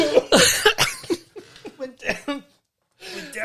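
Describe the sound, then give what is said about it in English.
Harsh coughing fit with sputtering, choking bursts after a slurp of drink went down the wrong way, down the windpipe, trailing off into strained breaths before a short pause and more noise. “Went down the wrong way. Down my windpipe.”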